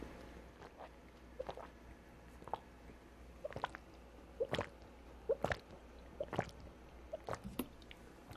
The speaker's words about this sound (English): right after I take a little drink of water here. I'm drying out again.